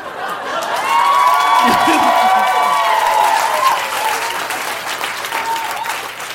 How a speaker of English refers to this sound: I also love applause.